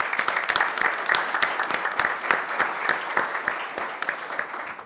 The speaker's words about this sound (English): You can see our technical panel that helped put this together. And I want to start off and just give them a round of applause for doing this.